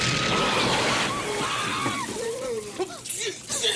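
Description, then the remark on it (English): A loud rush of water splashes and sloshes onto a person for the first couple of seconds, then gives way to frantic shouting voices that rise and fall in pitch. “Hot head needs cool water.”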